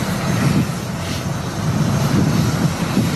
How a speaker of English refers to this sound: He revels in the moment the Patriots jet arrives on the tarmac. My baby's here.